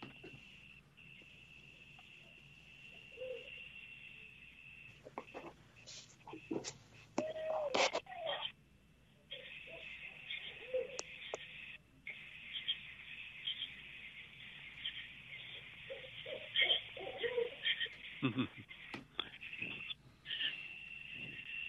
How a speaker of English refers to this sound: That's an owl. Yeah, it's an owl. Yeah. Yeah. Okay. And I think it's a barred owl.